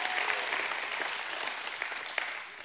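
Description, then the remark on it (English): A church audience claps their hands for God in a dense, steady wash of applause lasting a few seconds, with sharp individual claps popping out and the sound tapering slightly at the end. “Give him a hand clap and a shout of prayer.”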